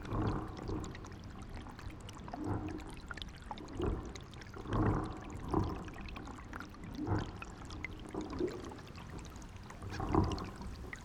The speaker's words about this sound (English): The underwater sounds that were coming from the loch, you could hear all of these bottles and tires and swirling under the water somewhere deep, and you could hear that all these bottles tinkling away.